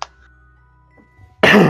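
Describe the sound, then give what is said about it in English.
A single loud throat-clearing cough bursts out near the end after a quiet pause, preceded by a faint click at the very start. “Coughs as if to clear throat.”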